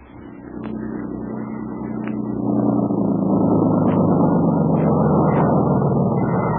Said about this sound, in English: we see a couple of natives busily transforming it from a crude boat into a smooth, sleek motorboat. Soon, the motor's on. After a moment, a slim, trim, grim woman steps to the wheel, and the boat swings into the river channel, up a narrow creek.